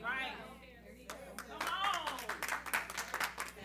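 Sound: a few scattered claps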